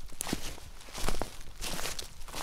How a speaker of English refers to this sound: The sidewalk crunches as you make your way to the park.